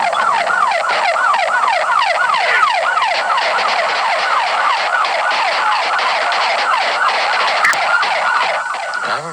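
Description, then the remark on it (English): A police car siren wails in a rapid, continuous yelp during a car chase, recorded by the police car's dash cam in August 1999, loud throughout, with steady road and engine noise underneath and no one speaking. “From the dash cam camera of a police car, you get a front row seat of the chase”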